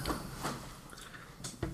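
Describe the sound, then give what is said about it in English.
Rye whiskey being poured into a glass, heard as a few soft, uneven splashy glugs with faint wet trickling between them, fairly quiet and with no talking. “Did you just pour, an entire bottle of rye into there and...”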